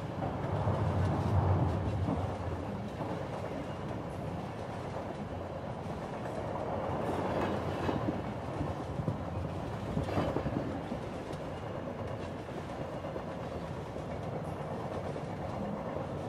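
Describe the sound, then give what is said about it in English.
A steady, continuous rumble of train wheels rolling over rail tracks, with soft rhythmic clacks under a broad low roar, heard from inside a moving carriage with no talking. “The sound of the tracks now hypnotically sending you to sleep.”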